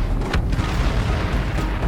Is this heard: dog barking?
no